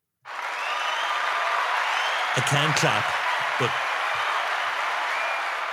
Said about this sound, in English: I can't clap anymore. No clap. Because it sounds like something else.